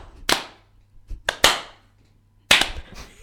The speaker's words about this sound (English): Sarcastic. Yeah, I mean, it's quite hard to do en masse. The problem with the sarcastic clap is only one person can do it, so if you did go to him in a flash mobby kind of way...